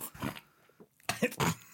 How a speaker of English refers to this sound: I was supposed to just do some ASMR of me slowly drinking, and it turned into me coughing and choking on it because he made me laugh.